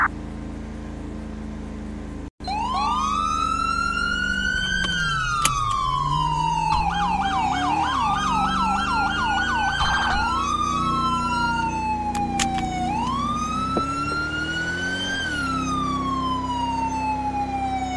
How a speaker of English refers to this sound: Single siren use for low priority.